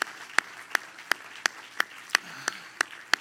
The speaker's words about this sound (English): Everybody clap your hands to the Lord. Everybody clap your hands.